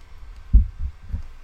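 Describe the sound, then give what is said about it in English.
A soft, low heartbeat-like thump, played as a meditative beat for a guided meditation, pulses at a slow, steady pace, three muffled beats standing alone against a quiet hum. “A heartbeat, if you will.”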